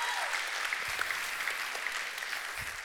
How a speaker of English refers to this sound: Can we give our worship team a round of applause? Thank them for what they do.